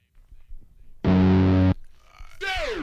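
The title track of an album begins with a quiet rumble, then a loud, buzzing, distorted synth chord holds for under a second before a swooping, bending electronic tone kicks in.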